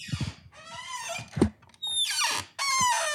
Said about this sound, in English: That's all you. My chair doesn't make any noise.